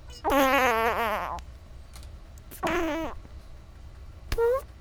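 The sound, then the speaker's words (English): A person makes three mouth fart sounds, buzzy and wavering: a long one first, then a shorter one, then a brief final burst, loud with pauses between. “And then you make three fart sounds.”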